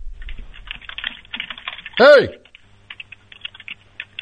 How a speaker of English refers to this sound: Typer. Hey, you typing. You can't hear me? Come on, typer. Hey. Oh, hey. I heard you typing for about 30 seconds there.